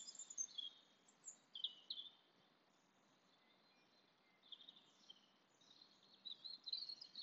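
Outdoor birdsong with a woodpecker among the birds: bright, high chirps and twitters in two bursts separated by a quieter lull, over a soft steady ambient hush, no talking.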